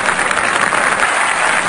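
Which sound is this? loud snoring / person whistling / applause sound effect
applause sound effect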